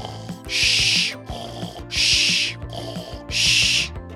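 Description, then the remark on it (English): Three loud, breathy snores come at a steady pace, each a hissing rasp lasting about half a second, with soft, tonal background music running underneath. “Why are you snoring?”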